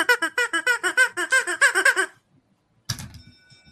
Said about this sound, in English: You want to know what I play? Rubber Chicken.